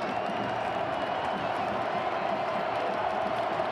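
A large stadium crowd of Oklahoma Sooner fans roars steadily throughout a college football game, a dense, continuous wash of cheering voices at a fairly even loudness with no break or single voice standing out.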